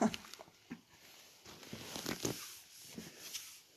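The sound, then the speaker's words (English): Soft, irregular crunching of someone chewing communion bread during a church communion, with scattered crisp bursts and small rustles over about four seconds, fairly quiet and with no talking. “We'll try not to make too much noise crunching.”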